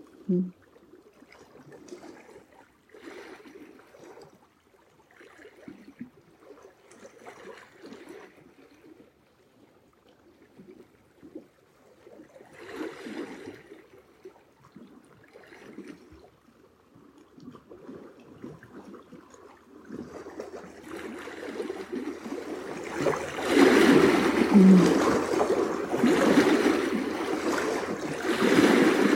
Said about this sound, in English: I'm feeling the joy of the water, the exuberance, the living in the moment. There's no worry here. The water and rocks at play, back and forth